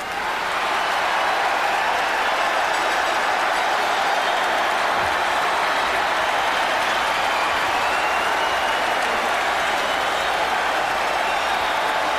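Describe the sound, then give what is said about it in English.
An arena crowd at the Nassau Coliseum roars and cheers steadily for Herb, the timekeeper, after Joan Rivers introduces him, with dense applause-like noise holding at a loud, constant level for the whole stretch and no individual voices standing out. “And so the crowd at the Nassau Coliseum, they are going absolutely nuts for Herb.”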